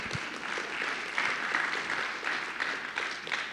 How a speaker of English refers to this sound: I love it when people applaud when I'm preaching because I say to myself, that was a good point.